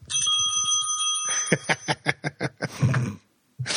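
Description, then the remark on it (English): A bicycle-style bell from an iPhone app, rung by shaking the phone, rings bright, its tone lingering, then several quick successive rings follow in a rapid burst before a brief pause and one more clang. “Okay, and it says if you really want to ring the bell, try shaking the iPhone.”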